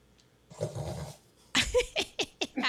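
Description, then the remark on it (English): A dog named Mac coughs and sneezes after drinking water in the kitchen: a rough, sputtering burst of about a second, then a string of five or six sharp, snorting hacks in quick succession, fairly loud with no talking. “I'm sorry, about 10 minutes ago, Mac had a whole situation in the kitchen where he was drinking water and started coughing and sneezing, and so you're probably going to hear that.”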